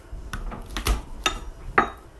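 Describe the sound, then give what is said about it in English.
A knife chops garlic on a cutting board: four or five sharp, crisp knocks at an uneven pace, moderately loud, with a faint background hiss and no talking. “So I kind of want to get the garlic a little bit squared away and then I'll slice up the onions too while I'm here at the cutting board. Crunch, crunch, crunch.”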